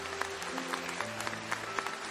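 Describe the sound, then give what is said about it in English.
A church audience applauding parents, step parents and grandparents at a child dedication, a dense wash of many hands clapping at once with a low sustained hum underneath, moderately loud and continuous throughout. “And if you happen to be a step parent or a grandparent stepping in, we applaud you today.”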